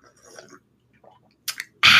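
Someone takes a sip of a drink: soft wet mouth sounds and a small slurp, then a quick gulp followed by a louder, breathy burst of noise at the end.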